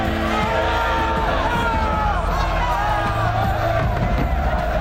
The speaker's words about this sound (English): But amid the applause, there were also cries of protest.